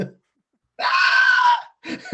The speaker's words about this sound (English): Did you hear a high pitched scream when I said it to Bellagio?